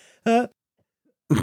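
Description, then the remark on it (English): A short, voiced cough or throat clearing comes through fairly loud, followed by a pause of silence and then another rough, throaty burst at the end. “Cough button.”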